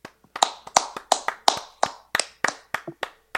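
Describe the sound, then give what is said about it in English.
A short round of applause for fighter Donald Cowboy Cerrone: about a dozen sharp, crisp hand claps in a steady, slightly uneven rhythm, fairly loud and with no voices. “Gets the W against Donald Cowboy Cerrone, who, let's take a second, round of applause.”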